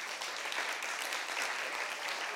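Steady audience applause for a shy audience member asked to stand up, a dense wash of many hands clapping at an even level throughout, with no voices standing out.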